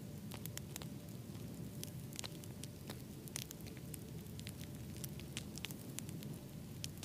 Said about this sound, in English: I want you to sit down in front of the fire. Feel the warmth of the flame, hear the crackling of the wood.